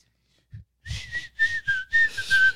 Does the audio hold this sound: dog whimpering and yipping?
no